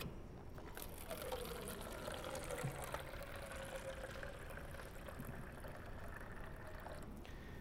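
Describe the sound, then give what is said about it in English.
Good clean water pours steadily into a container for several seconds, a continuous splashing trickle with a faint tonal ring running through it, and no one speaks. “And so here, I just have some good clean water.”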